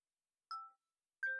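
A phone's two-note electronic bedtime reminder chime, telling its owner to go to sleep: a short tonal ding followed about a second later by a second ding at a slightly different pitch, clear with silence around it.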